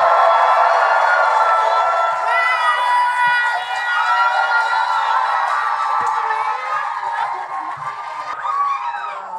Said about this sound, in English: Ladies and gentlemen, please give a big round of applause for tonight's hosts, Matt Rogers and Joel Kim Booster.